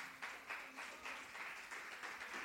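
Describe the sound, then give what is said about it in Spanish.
A crowd breaks into sustained applause at a preacher's urging, many hands clapping together in a dense, steady wash of sound with slight rhythmic surges, without any voices standing out. “Aplauda, no se quede con las ganas.”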